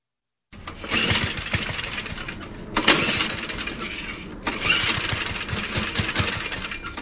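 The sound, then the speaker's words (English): A small, temperamental lawnmower engine is pulled and sputters to life, coughing with a couple of loud bursts before settling into a rough, uneven running rattle, with no talking. “Well, believe it or not, a temperamental lawnmower was a key player in the life of a family”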